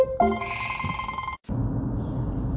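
A telephone rings loudly, a bright electronic trill lasting just over a second, then stops abruptly and gives way to a steady low rumbling background noise.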